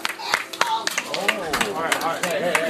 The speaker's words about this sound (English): Oh, people clapping. What happened?